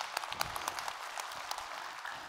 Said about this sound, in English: Let's give her a round of applause as she comes to the stage.